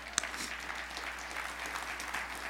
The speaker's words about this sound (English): Now, if we're going to applaud, let's do it together. Come on, let's do it.